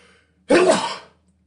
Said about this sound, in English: Look at that. My dog allergy just through saying golden retriever, I had to sneeze.